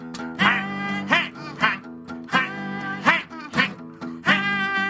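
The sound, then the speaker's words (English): Geese honk repeatedly and loudly, a quick series of nasal, brassy calls in an uneven rhythm, layered over a steady low droning hum. “Check out that goosey sound going.”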